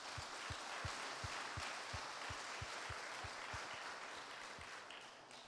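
Sustained applause from a crowd, a dense wash of many hands clapping steadily throughout, with a few louder, regularly spaced claps standing out in a quick, even rhythm.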